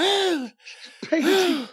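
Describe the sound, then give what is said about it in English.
A voice imitates a wrestling commentator's heavy panting: a strained, voiced gasp, a short breathy exhale, then another loud, labored burst of breathing. “Everyone else has a strong voice. And he's panting.”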